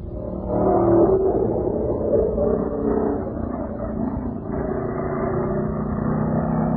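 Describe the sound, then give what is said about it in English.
Stock car racing engines at the West Peabody Speedway roar in a steady, dense rumble, several motors droning together at high revs for the whole stretch, loud and muffled with no voices. “Do we have any sound effects for the West Peabody Speedway?”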